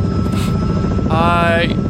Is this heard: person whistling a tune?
no